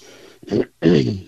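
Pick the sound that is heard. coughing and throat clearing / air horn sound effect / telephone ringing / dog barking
coughing and throat clearing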